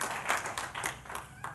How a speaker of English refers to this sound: Give your hand. Give yourselves a hand clap, seriously. I'm serious on that.